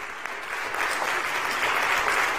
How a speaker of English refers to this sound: You guys have a wonderful pastor. Let's give God a hand clap of praise for him.